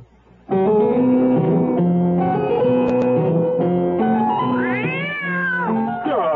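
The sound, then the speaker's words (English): A cat meows loudly and insistently in a long, drawn-out yowl lasting several seconds, its pitch rising and falling toward the end, with no talking over it. “Oh, I'm sorry, kitty.”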